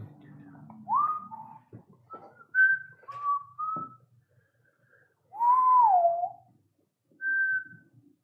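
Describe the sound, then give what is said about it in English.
Someone across a lake whistles a few aimless, tuneless notes, short chirpy tones and one longer wavering slide, with pauses in between, clear over a faint low background hum. “And as you kind of look up and see over the river, or the lake, sorry, you see or hear someone whistling in a tuneless manner.”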